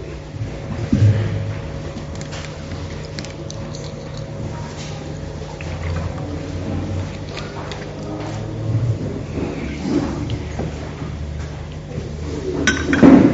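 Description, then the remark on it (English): Someone drinking water from a glass during a church sermon: a light glass clink at the start and another near the end, with soft handling and liquid sounds over a steady low hum, no talking. “While you get it, I'm just going to drink some water.”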